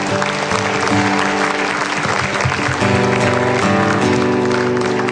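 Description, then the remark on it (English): An audience applauds the Lord in a morning worship service with dense, continuous clapping, while sustained musical tones, like an organ or keyboard chords, play underneath and shift pitch partway through. “applaud the Lord this morning?”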